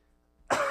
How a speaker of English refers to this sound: last one while … coughs